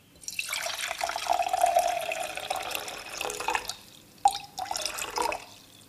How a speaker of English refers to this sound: And what we're gonna do is, I'm gonna measure around 1 cup of water.